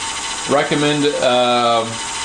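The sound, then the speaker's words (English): A small pump motor in a cold brew maker whines for about a second and a half, its tone rising and then dropping into a steady lower hum over a constant background hiss, as the pump reverses the water flow between its containers. “All right, so now it's reversing.”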